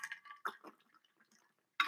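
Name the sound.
drinking water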